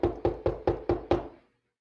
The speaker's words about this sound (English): I knock on the door. Now I'm thinking to myself, I know somebody's home. I saw the blinds open up. I knock again.